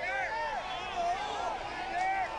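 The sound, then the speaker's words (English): A crowd yelling and cheering for Tiger on a practice day, with many overlapping raised voices swooping up and down in pitch over a steady roar, loud and sustained throughout. “So listen to the people.”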